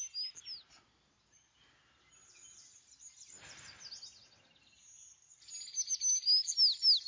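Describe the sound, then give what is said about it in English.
A bird chirps in quick, high-pitched bursts, faint at first, then fading into soft rustling before returning louder in rapid, repeated tweets toward the end. “It's a bird, Dad.”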